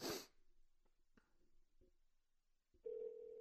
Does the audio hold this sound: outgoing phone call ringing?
yes